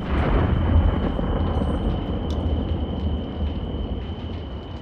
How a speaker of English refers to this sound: Inside the walls of a castle during a storm.